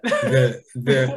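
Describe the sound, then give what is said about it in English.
Two loud cough-like bursts separated by a brief pause, each with a strong voiced, throaty quality, heard on their own with no talking. “But that is a cough, goddammit.”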